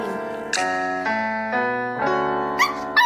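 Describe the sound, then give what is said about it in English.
A dog howls along with a girl singing karaoke at home, holding long tonal notes that step up and down in pitch every half second or so, steady without pauses. “every time she takes a breath to start singing, her dog Leo steals the show right on cue”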